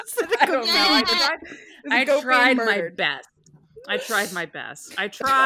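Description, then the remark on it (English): A person imitates a sea goat, letting out several wavering, quavering goat-like bleats in quick bursts with brief pauses between, loud. “Make the sea goat noise.”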